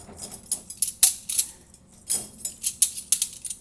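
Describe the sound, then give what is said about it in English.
Bright metallic clinks and jangles of silverware being taken out of a dishwasher, a quick irregular series of fairly loud clatters with brief pauses, no voices. “Let's see if it rolls in when I get this last chunk of silverware out of here.”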